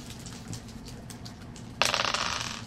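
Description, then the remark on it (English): Dice clatter and rattle across a hard tabletop during a tabletop game, after a quiet stretch with a low background hum, in a quick burst of tumbling clicks that fades as they settle. “Stand by this doorway and roll the Gil-approved dice.”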